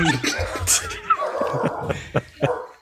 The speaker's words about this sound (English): Yeah, set off another dog.